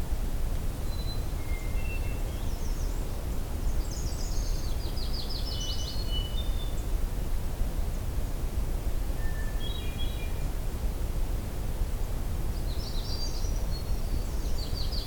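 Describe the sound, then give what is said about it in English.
A magnolia warbler sings short, sweet whistled phrases that repeat every few seconds, fairly faint over a steady rushing background hiss, with other thin bird notes scattered between. “Hey, there's a magnolia here.”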